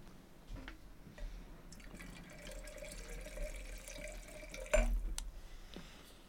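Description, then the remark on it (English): Vodka pours in a steady, gurgling stream into a glass, its tone rising gradually as the glass fills, with a brief sharp clink near the end. No one speaks. “That wasn't pee. That was vodka.”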